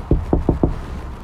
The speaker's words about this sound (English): I knock on a glass door.